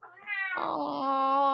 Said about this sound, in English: Hello, Scabby. Sorry, cat just walked in.